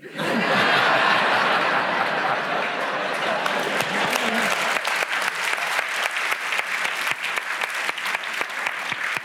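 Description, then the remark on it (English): An audience bursts into sustained applause mixed with laughter at first, greeting a listener's prize-winning definition of the word 'cachinnate', then settles into steady, dense clapping that holds loud for about nine seconds. “I think the applause David, suggests that he one.”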